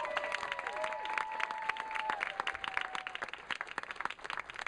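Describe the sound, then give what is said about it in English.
An audience at a comedy show claps steadily throughout as a comedian is introduced, a dense crackle of many hands, while a sustained whistle or cheering shout rises and glides over the applause before fading out partway through. “Clap it up.”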